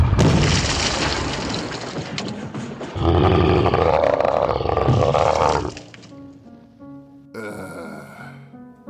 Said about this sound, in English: Well, that's just fantastic. Do you realize you've just burst through my wall? I hope you plan on fixing that, you big, goofy,